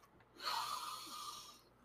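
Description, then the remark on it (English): One long, deep sniff of a scented candle, a breathy inhale through the nose lasting about a second, then fading out. No one speaks. “How about I just let you smell my candle?”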